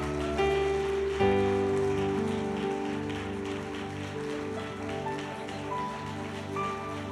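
An audience applauds with a steady, dense patter of clapping that holds for several seconds, over sustained organ-like chords. No one speaks.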